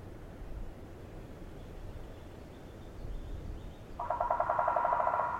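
A woodpecker drums a rapid, even roll of taps near the end, fairly close and clear, after several seconds of low outdoor rumble. No one speaks.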